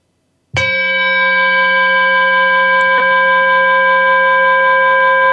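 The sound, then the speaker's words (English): A single meditation bell is struck once and rings out with a clear, sustained shimmering tone that lingers steadily for several seconds with no voices present. “And before we start, I want to play again my bell so that we can also breathe together a little bit.”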